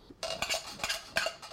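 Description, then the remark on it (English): A utensil scrapes the inside of a metal can in several quick, uneven strokes, with a ringing metallic rasp as canned Great Northern beans are pushed out into a colander to drain. No one speaks. “I'll dump it into your colander. Scrape out the ones that always stick to the bottom.”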